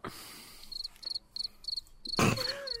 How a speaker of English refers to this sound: Okay. Fucking cricket sound effects.